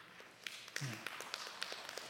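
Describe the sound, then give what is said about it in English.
Three moms applaud with sparse, uneven claps, a dozen or so sharp slaps that don't fall into a shared rhythm, over a soft background hum with a brief low murmur. “Three moms applauding.”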